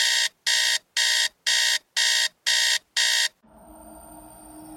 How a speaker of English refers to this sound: At 5:15 a.m. the following morning, the panic alarm was triggered.